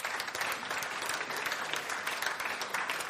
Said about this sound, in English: Let's give them a clap as they come up.